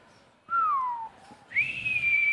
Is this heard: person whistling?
yes